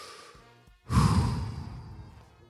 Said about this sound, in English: Again, and always, keep breathing. Keep breathing. Take a big deep breath with me. Come on.